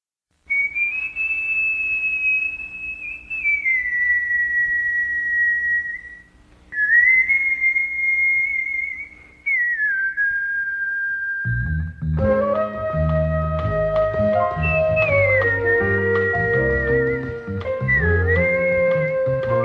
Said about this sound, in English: Darren McGavin, that's his name. But the opening is just a whistle with him at his desk. It's a little awkward and a little creepy, but that's what it is supposed to be.